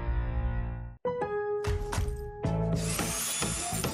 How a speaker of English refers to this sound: Nothing sounds quite like a dad's day at Lowe's. Like the DeWalt 20-volt max brushless drill and driver kit